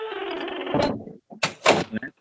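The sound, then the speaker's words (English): A door creaks open on its hinges with a drawn-out, groaning squeal, followed by a few clattering knocks and thumps as it moves and settles. “That was a scary door. Sorry. Maybe you should oil up those hinges, ma'am.”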